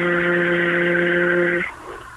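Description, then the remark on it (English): A voice imitates a road drill with a loud, steady, hissing buzz held for about a second and a half before cutting off abruptly. “You know those road drilling equipment, no?”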